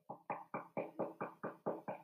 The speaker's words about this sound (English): The wolf, a little out of breath from running, arrived at grandma's and knocked lightly at the door.